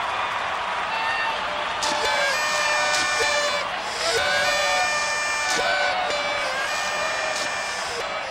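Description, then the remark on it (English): A large crowd applauds and cheers continuously, with dense clapping layered under overlapping shouts and whoops, holding a steady, loud level for the whole stretch. “Yeah, I guess we should do like this, applause, and then...”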